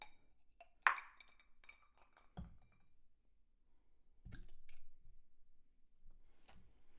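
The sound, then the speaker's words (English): A sharp clink as an ice sphere drops into an emptied rocks glass, followed by a few soft, dull knocks and brief rattles against the glass. “Now I'm gonna add a sphere cube.”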